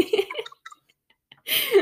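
Wet chewing and mouth noises from a person chewing in front of a camera come in two bursts, a quick smacking run, a quiet pause with faint clicks, then a louder, squelchier stretch.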